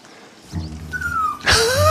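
A dog gives a single loud, sharp bark after a brief high whine, set over a low rumbling background. No one speaks.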